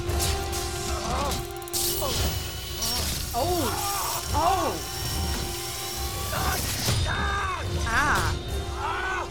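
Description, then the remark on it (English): A surgical drill grinds into bone, drilling into the marrow, with a steady, high-pitched whine and rough mechanical rattle that runs the whole time, while muffled voices murmur underneath. “So basically, this is drilling into his marrow at this point.”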